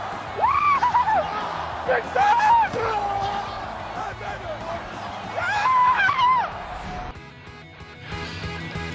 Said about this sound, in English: the Fitz scream, as we kind of called it, is Ryan Fitzpatrick watching the game-winning touchdown being scored in that game